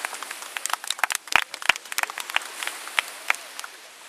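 An audience applauds steadily for about four seconds, many overlapping hand claps forming a dense, crackling wash with a few sharper individual claps standing out. No one speaks.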